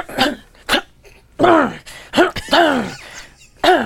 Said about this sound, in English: I'm going to record you coughing before the show.